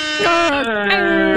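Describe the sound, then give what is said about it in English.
A caller on the phone imitates an air horn with his voice for Freestyle Friday: a loud, sustained, buzzy honk that holds a steady pitch, dips briefly a couple of times, then carries on without a break. “Can you also sound like the air horn?”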